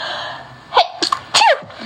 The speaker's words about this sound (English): I'm gonna sneeze. Oh my god.